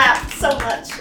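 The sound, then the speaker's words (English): A few quick hand claps in a loose, steady rhythm, mixed with a voice that carries through the second, all at a moderate level, clapping for a man who dances and does a little pirouette. “I clap.”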